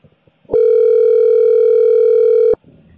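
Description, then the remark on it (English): A telephone rings with one loud, steady electronic tone that holds for about two seconds, then stops abruptly. Faint background murmur sits before and after it. “Phone's ringing.”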